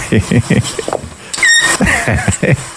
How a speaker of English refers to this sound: Stop for a second. Listen how cute this little baby kitten is. Right?